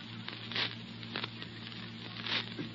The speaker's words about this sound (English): Now, these are the creakiest stairs I ever heard.